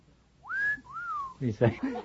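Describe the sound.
A long-drawn, gurgling whistle of astonishment from a man pausing while counting the pages of a large book on his lap, first sweeping upward, then drooping down in a slow second phrase, clear, followed immediately by a few spoken syllables.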